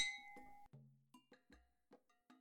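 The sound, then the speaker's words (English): Glasses clink together in a toast, starting with a long bright ring and followed by a quick run of lighter clinks, clear with no voices. “See you soon. Cheers!”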